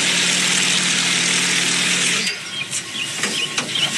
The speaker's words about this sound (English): And today was the perfect weather to take it up for a quick flight. I even got to take the controls. Okay, you've got the helicopter. I'll just kind of guard the throttle a little bit, but you've got it.